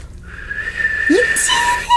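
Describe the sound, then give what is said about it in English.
A breathy, airy whistle imitating a spooky wind, a sustained wavering tone with a brief rising swoop, moderately loud and heard alone for about two seconds. “It's a little spooky wind.”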